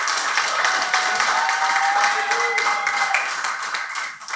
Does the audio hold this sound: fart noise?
no